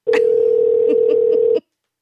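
A loud, steady telephone tone from a phone call that goes unanswered holds a single pitch for about a second and a half, then cuts off abruptly, with faint clicks underneath and no one speaking.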